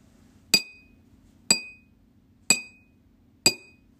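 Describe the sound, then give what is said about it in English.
A spoon knocks on a glass cup four times at a steady one-second pace, each tap a bright, ringing clink that fades quickly, over a faint low hum. “Sound number one, the sound of a spoon knocking on the glass cup.”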